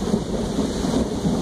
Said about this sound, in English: You hear that thunder? That was lightning. I thought that thunder.